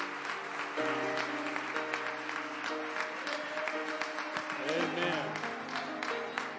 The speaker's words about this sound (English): Let's all clap our hands unto the Lord today.